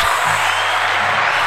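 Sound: applause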